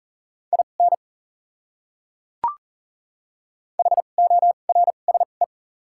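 Fast Morse code at 40 words per minute with 2x character spacing, sending common words as a steady mid-pitched beep: short and long pulses in two bursts of characters separated by a pause, with a single sharp click in the silence between.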